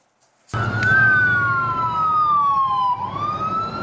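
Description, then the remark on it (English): An ambulance siren wails loudly in a slow falling then rising sweep, ringing over the low rumble of heavy vehicles in a heavily armed convoy of Mexican soldiers with Humvees, moving along a road in Mexico toward the US border. No one speaks. “The two survivors brought to the border in an ambulance protected by a heavily armed convoy of Mexican soldiers with Humvees and machine guns.”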